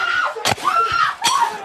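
A man outside a house screams and yells in drawn-out, wavering cries as he makes his way around to the back of the house, broken by two sharp banging impacts. The cries are loud, with no other voices.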